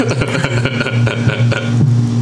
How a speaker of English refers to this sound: What the fuck is that sound? It's my refrigerator. It's making fucking ice.